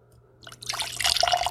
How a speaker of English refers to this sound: And I'm going to be pouring this into a nice little coupe. I've got a 4-ounce coupe here. This fits snugly in there.